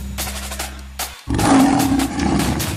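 A low humming drone gives way to a single loud lion roar that swells for about a second and a half, harsh and rumbling, with no one speaking.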